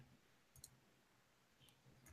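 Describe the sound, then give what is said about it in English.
A few sharp computer mouse clicks, fairly quiet: a quick double click early on, then a single click and another near the end, with soft background noise between them. “What am I clicking on?”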